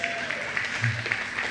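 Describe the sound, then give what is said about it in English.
An audience applauds with a steady patter of many hands clapping at an even, moderate loudness, with faint voices murmuring underneath. “Yeah, I guess that's worth clapping.”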